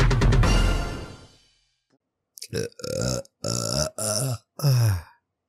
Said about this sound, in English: Starting off the smoke break with a burp. Just like we started off the podcast.